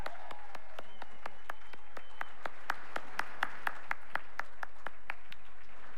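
An audience at an awards night applauds, a dense, steady patter of many hands clapping with sharp, evenly spaced claps standing out over the wash, holding at a moderate level throughout with no voices.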